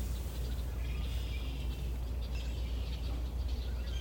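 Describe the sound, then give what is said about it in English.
Faint, scattered bird chirps over a steady low outdoor rumble during a walk, with no one speaking. “Can you hear any birds?”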